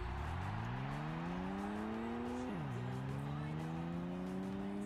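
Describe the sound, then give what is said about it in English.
A racing-game motorcycle engine climbs steadily in pitch, drops briefly with a gear shift, then revs up again, over a constant rush of tire and road noise. “Oh, this is real bad with the motorcycle.”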